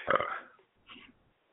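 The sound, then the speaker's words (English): A loud burp after drinking Pepsi erupts and trails off, followed a moment later by a second, softer gurgling belch. “Oh, that was a Pepsi burp right there.”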